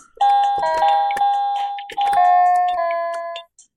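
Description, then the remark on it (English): Small electronic keyboard keys clatter with many quick clicks while two bright, sustained synth chords ring out and hold as a chorus is played, the keyboard's speaker held to the microphone. The key taps far outnumber the notes, and no one speaks. “What I love is we hear more key strikes than actual notes every time.”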